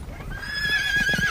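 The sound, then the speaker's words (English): A horse lets out a drawn-out, high whinny while hooves clip-clop steadily underneath, fairly loud, with no voices present, on a wild, rocky mountain way near the Borgo Pass. “We have had only the rest needful for the horses.”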